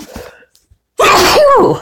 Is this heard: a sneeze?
yes